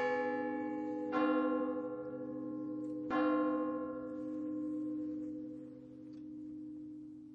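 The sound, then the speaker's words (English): Church bells toll slowly, with two strong strikes about two seconds apart, each ringing out into a long, rich hum that lingers and fades. No one speaks. “And then the bells began to toll, and every note of them told me things would never be the same.”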